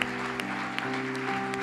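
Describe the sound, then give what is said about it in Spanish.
A church audience claps steadily in applause to God after a prayer, a dense, continuous patter of many hands over sustained musical tones, with a few sharper claps standing out. “¿Y qué tal si me acompañas a darle un fuerte aplauso a nuestro Dios, a nuestro Padre celestial?”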